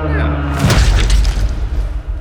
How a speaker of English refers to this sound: He was squished by the land whale's foot. Huh? Didn't see that coming. That is what I call fancy footwork.